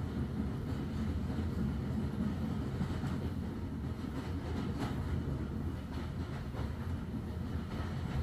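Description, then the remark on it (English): A steam train starts to move away from a station platform, a dense, steady low roar with faint rhythmic chuffing pulses running through it and no voices. “You step aboard, and the train begins to huff, chuff, and whoosh.”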